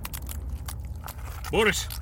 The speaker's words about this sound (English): Entity picks up grenade in teeth and swallows.